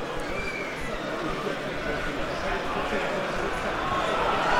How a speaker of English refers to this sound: And you can hear the agitation in this crowd. When we got here today, everybody was being very friendly because they thought they were going to win 6 or 7-0.